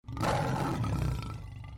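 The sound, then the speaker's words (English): A person lets out a fierce, growling roar imitating a big cat, loud, sustained for nearly two seconds before trailing off slightly, performed as a game character's 'Daunting Roar' bonus action. “And then I'm going to use my bonus action, Daunting Roar.”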